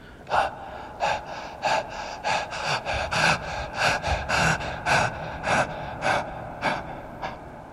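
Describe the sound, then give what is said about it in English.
Heavy, rapid panting, a steady run of a dozen or so harsh breaths about twice a second, each a raspy burst of air, with no talking. “Just as you start to slow down, you start to hear heavy breathing.”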